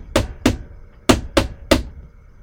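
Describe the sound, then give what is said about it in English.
Heavy pounding on a door: five loud, sharp thuds, a pair followed by a quick group of three, with short quiet gaps between them and no voices. “And suddenly there was a pounding on the door.”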